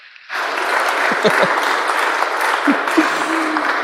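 A crowd bursts into sustained, dense applause after a brief quiet start, steady clapping with a few scattered voices and whoops rising over it.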